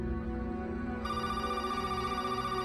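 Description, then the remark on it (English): A phone rings early in the morning with a steady, tonal electronic ringtone that fills the whole moment, growing brighter partway through. The ringing is fairly loud, with no voices. “And my phone rang pretty early in the morning, and there was an individual on the line from Special Crisis Team with International Mission Board that informed me that several missionaries had been shot and that Karen was among them.”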